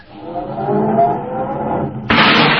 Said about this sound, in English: start it up, Andy, and back it over there in space number 7